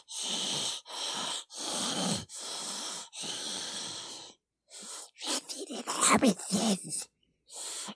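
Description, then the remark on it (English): A voice imitates Gollum's raspy breathing as a warm-up for the impression: five harsh, wheezy breaths in a steady rhythm, then a stretch of gurgling, throaty rasps, loud. “In order to like warm up to do it, I always do like the breathing.”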